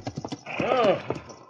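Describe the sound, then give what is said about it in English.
A few sharp hoof clops lead into a loud horse whinny with a rising and falling pitch, followed by more scattered clopping as it fades; the horse is tethered to a tree beside a trail. “Less than an hour later, he came on Ernie Joplin resting beside the trail with his horse tethered to a tree.”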